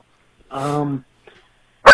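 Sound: dog barking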